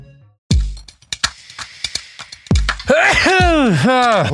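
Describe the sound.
A sharp, explosive sneeze bursts out, followed by a second loud sneeze and then a long, wavering voiced groan that rises and falls in pitch.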